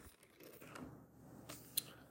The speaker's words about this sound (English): Y'all like the way that paper sounded when I just flipped that shit? It was loud as hell.